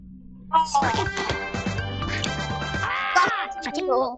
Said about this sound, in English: Oh, it was geese.